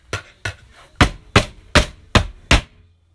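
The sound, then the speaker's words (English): Seven sharp, heavy chopping blows land in a quick, steady rhythm, an axe hacking into a wooden door with loud cracking thuds and no voices. “Okay, smashing through the door with an axe.”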